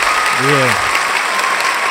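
Steady, dense applause sound effect fills the whole two seconds at full volume, with a brief vocal whoop rising out of it near the start.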